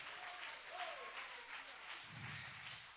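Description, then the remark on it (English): An audience claps steadily, a dense wash of many hands that holds at an even level for the full three seconds, with no voices standing out above it. “Come on, clap your hands.”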